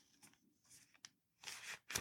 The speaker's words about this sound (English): I am going to start a couple of stories, and I wrote some down on a piece of paper, so you will hear me turning the pages.